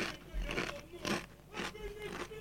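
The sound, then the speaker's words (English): Crunching on crisps in front of a microphone, about five crisp, noisy chews landing roughly every half second in a steady rhythm, loud, with no talking. “I'm like, wait, I have just been eating these in front of a mic this whole time.”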